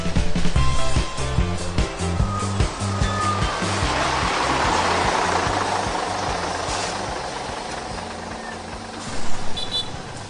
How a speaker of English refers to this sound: Okay. Back on the bus.